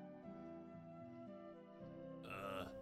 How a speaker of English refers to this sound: Grob himself is still sleeping, though. You can either hear his deep snores emanating from his small makeshift enclosure.